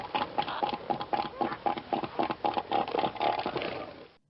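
A rapid series of short, snorting grunts repeats in an uneven rhythm, much like a pig oinking. The seal's calls are fairly loud, with no voices.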